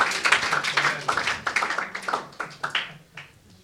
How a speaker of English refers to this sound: Yeah, I thought you wanted to clap your hands. Alkışlayabilirsiniz.